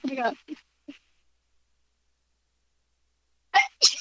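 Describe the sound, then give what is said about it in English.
Two quick, forceful sneezes close together, following a few brief vocal sounds and a few seconds of silence. “I'm going to sneeze.”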